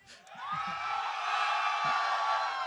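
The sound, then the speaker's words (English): A large crowd of fans at Worlds cheers and roars, the noise swelling within the first second and holding at a loud, steady level with scattered whoops and shouts rising above the din. “This crowd is actually pretty insane.”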